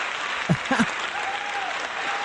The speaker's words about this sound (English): Let me get an applause